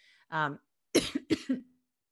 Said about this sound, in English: pardon me, I had a little cough there.